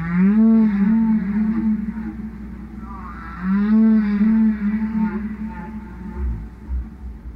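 Humpback whale song played as a recording, blasted by Greenpeace activists confronting whalers: two long, rising and falling moaning calls rich in harmonics, loud, with no voices over them.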